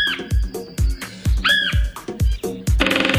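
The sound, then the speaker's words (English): A red-headed woodpecker (Melanerpes erythrocephalus) gives harsh, raspy squawking calls, repeated several times in quick succession, over steady low thumping beats, ending in a burst of buzzy noise. “Yep, it's the red-headed woodpecker.”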